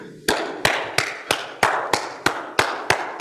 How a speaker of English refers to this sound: And make sure, okay, you can't sit there clapping. Okay, clapping.